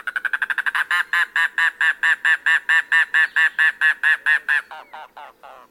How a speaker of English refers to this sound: There lurks a more secretive bird in the Everglades and Florida Keys, the mangrove cuckoo. Rarely seen, it sings sporadically in winter, but when it does, you'll know it.